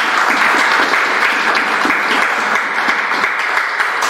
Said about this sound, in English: Someone give the Lord a clap of hands.